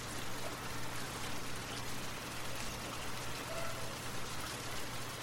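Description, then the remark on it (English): Soft, steady rain patters continuously with an even hiss, no voices, and a faint low hum runs underneath throughout. “Take a moment to simply listen to the rain, letting its gentle rhythm lull you into a peaceful sleep.”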